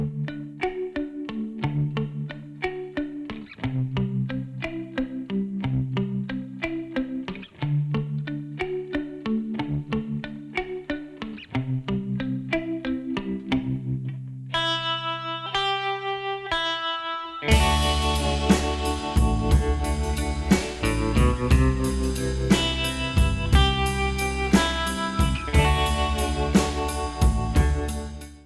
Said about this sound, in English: let us enjoy some short clips of the … music for educational purposes